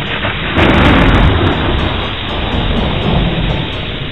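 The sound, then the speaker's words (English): A loud crash of thunder breaks out over a steady rush of heavy rain, rumbling and rolling on for several seconds before settling into the continuing downpour. “Then, one day, there was a storm.”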